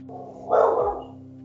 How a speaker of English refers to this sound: Yeah, we got two dogs as well, and they like to bark.